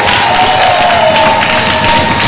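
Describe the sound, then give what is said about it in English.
A large crowd applauds and cheers loudly and continuously, a dense wash of clapping with whoops and shouts, sustained at full volume throughout, as the audience stands on its feet giving Jesus a standing ovation. “Get up on your feet, clap to Jesus, then sit down. Give Jesus a standing ovation.”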